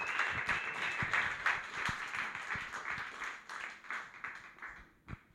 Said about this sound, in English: You guys ready for your first comic? Thank God. We're going to give a big round of applause.